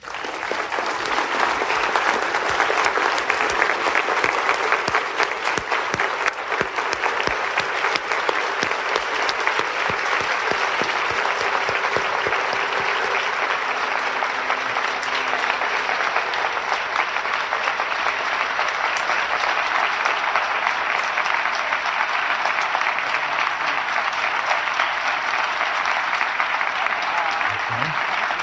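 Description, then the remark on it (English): Sustained applause from a large crowd welcoming an introduced guest, steady and loud for nearly half a minute, with dense clapping and no voices standing out above it. “Join me in a round of applause for Nancy Reagan.”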